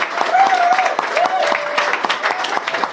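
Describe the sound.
An audience applauds steadily for a few seconds, a dense wash of many hands clapping at once, fairly loud and close, with faint voices or whoops mixed in.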